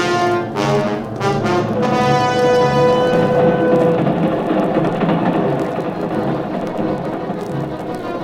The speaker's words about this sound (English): The subway train, Midtown, New York.